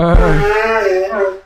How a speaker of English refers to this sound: I'm sorry, I'm about to blow my nose. No, please mute.